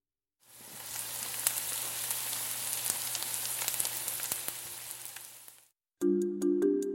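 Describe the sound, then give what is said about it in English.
Steady sizzling of food frying in hot oil while cooking a recipe, a dense hiss dotted with sharp little pops for about five seconds, then cutting off abruptly before a brief, different sound follows. “It has something to do with sizzling.”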